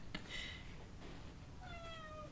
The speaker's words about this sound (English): Stop meowing.